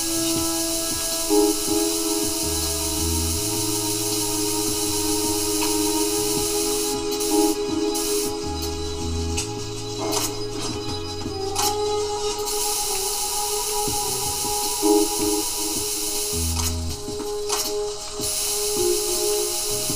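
A steady, broad hiss of coolant being sprayed at bugs on the ground in a video game runs throughout, over repeating low synth tones and occasional soft clicks, with no one speaking.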